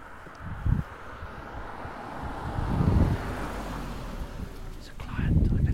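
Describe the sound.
A car driven by a client the speakers meet rumbles along a road in view of Goodwood Race Course, its low engine noise swelling and fading over several seconds, with wind buffeting the microphone and muffled voices in the background.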